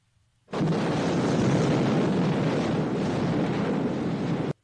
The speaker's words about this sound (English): It's an explosion, but you sounded hesitant about that. I think that is misleading, but not entirely inaccurate. Oh man, it sounds like a big movie.